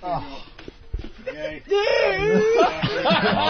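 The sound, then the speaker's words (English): A man lets out a long, warbling, growling yell imitating a Wookiee (Chewy) roar, loud, following a few brief clicks and murmurs. “If that wasn't a Wookiee yell, I don't know what the fuck is.”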